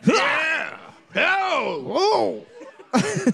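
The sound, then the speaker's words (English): A man lets out a series of drawn-out, sliding vocal groans, rising and falling in pitch like a dad straining to get up from a chair, in three or four loud bursts with brief pauses, as the sounds of a classic song in a song quiz question. “I call that my back hurting song. Dad getting off the chair song.”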